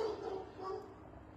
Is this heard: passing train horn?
no